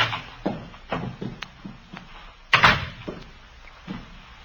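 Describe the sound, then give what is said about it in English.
A door being pushed open, with a string of soft bumps and knocks and one louder rattling thud midway through, no voices. “Door's open.”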